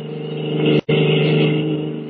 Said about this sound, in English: At the moment, they are speeding away from the naval base in a stolen car.